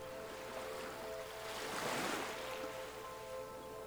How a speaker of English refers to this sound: We can learn a lot from the ocean as it relates to our inner landscape, and the sound of the waves is spiritually soothing.